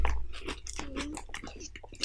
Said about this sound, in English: Excuse the chewing and shit. You know, niggas ain't ate. No, fuck y'all. Y'all chew too.